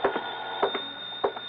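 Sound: telephone ringing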